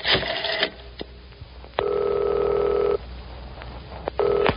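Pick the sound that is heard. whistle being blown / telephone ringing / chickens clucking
telephone ringing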